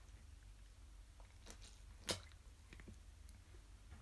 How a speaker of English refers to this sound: Sorry if you could hear me gulping.